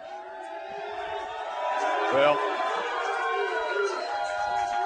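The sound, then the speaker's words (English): A crowd cheers and whoops steadily for about five seconds, a dense wash of many overlapping voices that swells slightly midway, with a man speaking briefly over it. “I love it when tell them they don't have to cheer for me now.”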